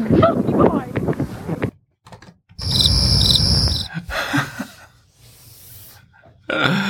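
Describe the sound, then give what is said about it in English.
A cricket sound effect, played by a wrong button press, chirps in a steady, high-pitched pulsing drone for a couple of seconds, following brief talk and a pause, with more voices and noise coming in afterward. “I hit the wrong button at the end. So the crickets were not for you.”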